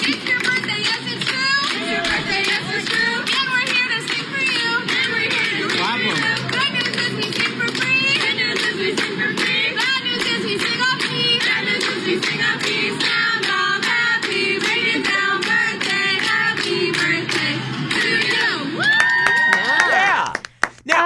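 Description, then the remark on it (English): A crowd of children at a Hooters restaurant in Jackson, celebrating a boy's fifth birthday, cheers, shouts and claps continuously at a steady, loud level, with overlapping high-pitched voices throughout, and a brief whistle-like tone near the end. “Now, I'm going to play you some audio of the kids celebrating at Hooters just to give you a feel for how excited he was to be there.”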